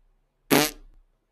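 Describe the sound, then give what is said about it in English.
A single loud, buzzing raspberry, a voice blowing a fart noise with the lips for about half a second. It starts abruptly and trails off, with no talking around it. “I'm going to come over here and blow farts right on the side of your fucking car.”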